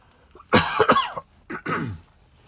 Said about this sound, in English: excuse me while I cough, I got a tickle in my throat.